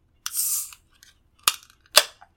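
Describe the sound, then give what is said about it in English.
A 32-ounce Crowler can of Ogden River Brewing coffee milk stout being opened: a half-second burst of fizzy hiss, then two sharp metallic snaps about half a second apart, fairly loud and with no voices. “Oh, big old 32-ounce can. Yeah. I'm gonna pop this top.”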